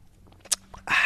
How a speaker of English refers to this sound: Let me sip it up. Sip it up.